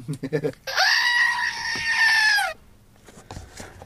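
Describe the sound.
A goat lets out one loud, drawn-out, human-like scream lasting about two seconds, close and piercing, with brief speech just before it and quiet talk resuming after.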